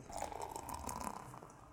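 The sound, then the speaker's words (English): Neptune Brewery's Azili, a 4% live pale beer, is poured from a can into a glass from a height, a steady splashing stream with a bright, fizzy hiss of foam running for under two seconds before easing off slightly. “I pulled it from a greater height so that we could get the noise on.”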